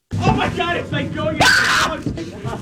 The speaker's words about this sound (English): I found 16 seconds of you and me screaming in 2010 at this haunted house. Let me play this. Here we go.